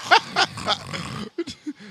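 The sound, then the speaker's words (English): Someone imitates snoring with three loud, rhythmic, raspy snorts, then a few short, low grunting blips, with no other talk. “Dude, the fatter your neck is, the more you fucking snore, dude. And he snores while he fucking drums.”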